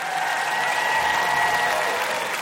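Steady, dense applause from an audience for Simon Rich, many hands clapping at once in a continuous wash of sound that holds at an even loudness throughout, with no voices standing out.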